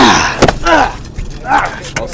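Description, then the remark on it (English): A car's driver's side door, which does not work properly, clunks open and then thuds shut, with a couple of sharp knocks close together and vocal sounds between them. “My driver's side door does not work, so I do this.”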